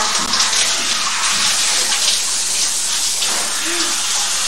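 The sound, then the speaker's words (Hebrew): Bath water with soap and dirt rushes and sloshes steadily, a continuous bright hiss of water in a tub with no pauses for the whole stretch. “לא, זה מים עם סבון ולכלוך.”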